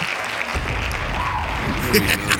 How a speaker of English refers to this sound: Hand claps.